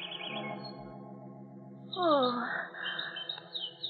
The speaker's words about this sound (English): You pulled the covers off the cage. Carl! Oh, Carl, I'm speaking to you. Those birds, I don't like them.